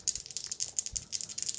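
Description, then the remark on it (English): An action die and challenge dice clatter and rattle in a rapid series of sharp, bright clicks and taps, tumbling irregularly for under two seconds with no voices. “And we're going to roll plus heart on our secure and advantage.”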